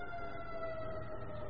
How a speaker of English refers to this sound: And I hear the sirens in the background as they go by the radio station.